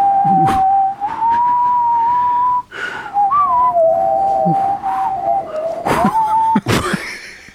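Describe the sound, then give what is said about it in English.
A person whistles a low, slow tune, trying to whistle from the belly, holding long steady notes with slight wavers and small pitch shifts, briefly breaking off midway with a breathy pause before continuing. “How do I get a whistle from my belly?”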